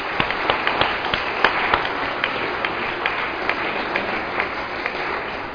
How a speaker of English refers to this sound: Is it appropriate to clap? Absolutely. Always appropriate to clap. Let's congratulate our new elders and deacons.